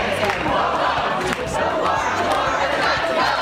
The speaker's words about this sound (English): Las Vegas makes it illegal to camp or sleep on the streets or sidewalks. The city council approving the measure in front of a fired up crowd.